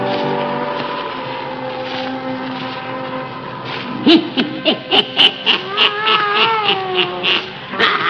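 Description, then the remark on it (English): Satan, the wise black cat of Old Nancy, the Witch of Salem, meows and yowls in a quick run of short, wavering cries over a sustained droning tone, fairly loud, with no one talking. “The fascination of the eerie, weird, blood-chilling tales told by Old Nancy, the Witch of Salem, and Satan, her wise black cat.”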